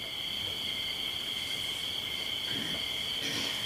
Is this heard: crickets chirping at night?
yes